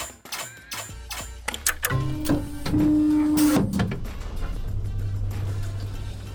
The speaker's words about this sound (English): I have turned a dishwasher into an amazing Flarshmarfler machine! Gus, can you plug it into the outlet over there?